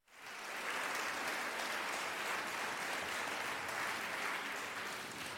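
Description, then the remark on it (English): A steady round of applause from a crowd, dense and sustained clapping that starts abruptly and holds at an even, fairly loud level for several seconds without any talking. “Anyway, giving y'all a round of applause.”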